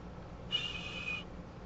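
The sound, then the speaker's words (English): A soft, thin whistle rises briefly out of faint background hiss, lasting under a second, airy and breathy with a slight wavering tone, then fades away. “So a low sounding whistle, a tenuous whistle, a thin sounding whistle.”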